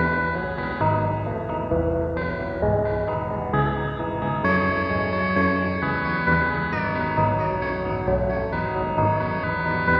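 Sustained synthesizer chords from a Disting module in mono-to-stereo chorus mode, with its Y offset and delay time adjusted, sent without a VCA straight into reverb. A wide, shimmering chorus and reverb wash shifts every second or so at a steady, fairly loud level, with no talking over it.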